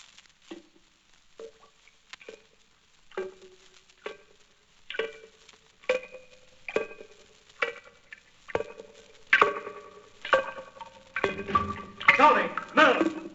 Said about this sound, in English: Well, you must have heard of that dripping sound. Maybe a leaky faucet in one of the bathrooms. But it sounded almost like explosions. The sound filled the whole house.